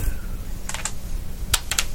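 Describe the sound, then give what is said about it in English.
Dice clatter across a hard tabletop in two quick bursts of sharp, clicky taps, over a low steady background hum with no talking. “Maybe switch the dice.”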